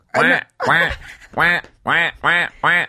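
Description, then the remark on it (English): A person imitates a duck, giving six loud, nasal quacks in a steady rhythm, each short and harmonically rich, spaced by brief pauses. “A quack?”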